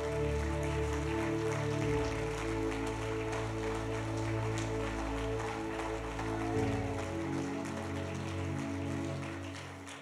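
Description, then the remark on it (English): A crowd claps steadily for about ten seconds as people come out of their seats to the front, a dense, continuous patter of applause blended with sustained keyboard or organ chords playing underneath, fading slightly at the end. “Keep coming. Keep clapping.”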